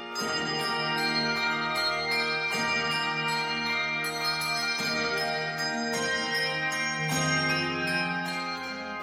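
A handbell choir plays a full, ringing piece, chords struck together every couple of seconds and left to shimmer and decay. The bright, sustained tones are loud and close, with no voices.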